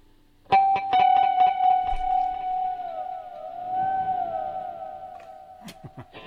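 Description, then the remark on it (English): An electric guitar fitted with a Vega Trem tremolo and assembled from parts of different guitars, played with heavy tremolo-bar bends, producing long, wobbling, moaning tones like a whale call, with rhythmic picked strums at first and sustained gliding pitches that swoop up and down, no talking. “That's called the whale sound.”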